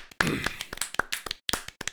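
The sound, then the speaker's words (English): Brief round of hand clapping, about a dozen sharp, crisp claps in an uneven, slightly overlapping rhythm, fairly loud with short gaps between bursts, lasting around two seconds. “The only person to get claps on this podcast besides the people that win the challenge.”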